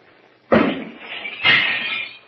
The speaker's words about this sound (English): Wunderbar. The pitcher explodes into a million fragments.